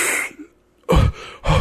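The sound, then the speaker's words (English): A voice imitates a man breathing really heavily and then taking a drag off an inhaler: three loud, raspy breaths, the first trailing off, then a short pause before two sharper gasping puffs in quick succession. No words are spoken. “And he starts breathing really heavy, and he reaches into his pocket and pulls out a inhaler and takes a drag off it.”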